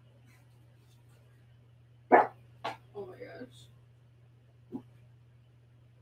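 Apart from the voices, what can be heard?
dog barking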